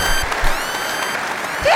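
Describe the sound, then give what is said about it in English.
A burst of steady applause, dense overlapping hand claps holding at an even loudness for a couple of seconds, with a thin high whistle-like tone rising briefly near the end. “Clap it up, clap it up, clap it up.”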